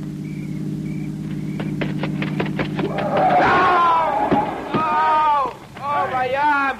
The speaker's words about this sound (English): Listen. It's a car. It's got to be the one I think it is.